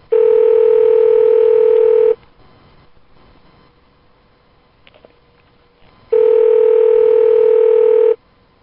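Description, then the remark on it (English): A telephone ringback tone on a prank call to Malacca Grill: two steady, buzzing rings of about two seconds each, separated by a roughly four-second quiet pause, with no voices. “In the meantime, here's the first prank call of the night.”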